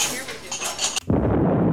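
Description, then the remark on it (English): Dishes and cutlery clink for about a second as they are moved around while a dishwasher is being emptied, then a denser, steady rumbling noise abruptly takes over. “I'm just emptying this dishwasher, getting ready for another hazelnuts.”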